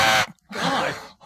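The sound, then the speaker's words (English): A person imitates an elephant trumpeting: a short, loud, brassy blast, a brief pause, then a longer, rougher harmonic bellow that trails off, with no talking. “Was that you? Yeah, it was an elephant.”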